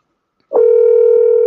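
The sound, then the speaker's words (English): A steady telephone dial tone, as a call is placed to get a caller on the phone, cuts in after a brief silence and holds at an even, fairly loud level without any break. No voices are present. “So let's see if we can get Leslie on the phone.”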